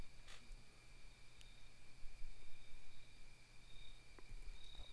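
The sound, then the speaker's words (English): Crickets chirp faintly in a steady, continuous trill against a quiet nighttime background in London, with a few soft clicks and a low hum underneath and no voices. “I don't know why there are crickets in London at night.”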